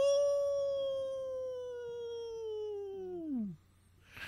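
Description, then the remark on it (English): A man imitates a dog's howl, holding one long, steady, mournful note for about three seconds before it slides downward and breaks off, loud with no talking. “That was a good howl. I was proud of myself.”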